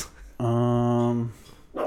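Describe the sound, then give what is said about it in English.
A single drawn-out, bark-like howl lasting about a second, loud, with a steady pitch; it sounds like a voice imitating a dog barking rather than a real dog. “It's not walking away because you're barking.”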